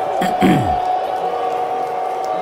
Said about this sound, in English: President Trump went to the game last night and didn't get the kind of reception I think he kind of hoped for. Here's some of the response of the crowd when he was announced.